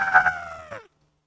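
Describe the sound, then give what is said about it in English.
A person's voice imitates a bird call as a call for a bird, a single drawn-out, strained cry like a rooster crow that bends downward at the end and cuts off, loud, with no other sounds. “That's my call I make for the birthday bird.”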